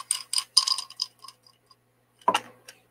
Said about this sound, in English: I'm going to roll the six-sided dice that has a skull for the one. It's cooler. And then we're going to use this dice. And it is in a Gizzard dice shaker, by the way. So it's sanctioned. We will roll the dice in order to pick which question.